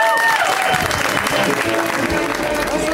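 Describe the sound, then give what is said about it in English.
A show audience applauds as comedian Moses Storm is introduced. It is a steady, dense wash of clapping at full volume throughout, with faint cheering and whistles mixed into the ovation. “Pal of mine, very funny person, let's hear it right now for Moses Storm. Give it up for Moses.”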